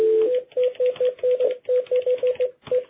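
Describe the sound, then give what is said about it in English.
A phone being dialed: about a dozen short, same-pitched beeps in quick, fairly even succession with faint clicks, with no one talking. “Let me try him on the phone.”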